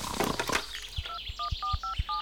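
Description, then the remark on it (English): A sergeant dials a phone: a quick series of five or six short two-tone keypad beeps, each with a soft button click, following a brief burst of rustling handling noise. “Get on the phone, Sergeant.”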